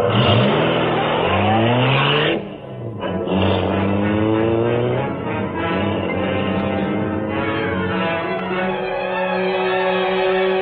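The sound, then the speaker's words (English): A car engine revs hard with rising, sweeping pitch, dips briefly, then roars again and settles into a steady drone as the vehicle drives off. No one speaks. “I'll drive.”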